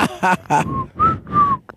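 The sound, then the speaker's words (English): A person whistles three short, clear notes while walking into a room, each tone sliding slightly, following a couple of brief voiced bursts at the start. “He whistled when he walked in the room.”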